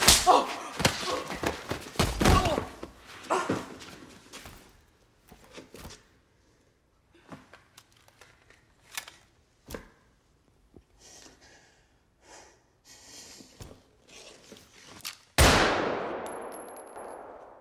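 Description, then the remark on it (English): A scuffle as Harry knocks Veronica to the ground: heavy thuds and clattering impacts with scattered gasps and rustling, ending in a single loud gunshot as she shoots him first, which rings out and slowly decays. “Harry knocks Veronica to the ground and then goes to shoot her, but she gets to him first.”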